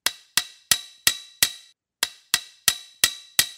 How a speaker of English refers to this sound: at the front gate of the farm, nails puckered into the corner of his mouth, furiously hammering with his hoof at what appears to be an old sign on a fence post next to the entrance.